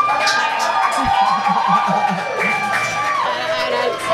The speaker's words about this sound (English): And the crowd goes wild.